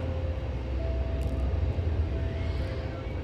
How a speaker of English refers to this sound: I can hear the Thames Link, which is just about to go over the railway bridge. There it goes.